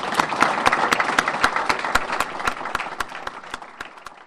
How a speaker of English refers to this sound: Join me in a hand of applause for our speaker.